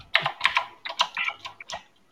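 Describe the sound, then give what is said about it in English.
Rapid clatter of typing on a computer keyboard, a quick irregular run of sharp key clicks, with no voices over it. “Yeah, who is typing? Who's clicking a button?”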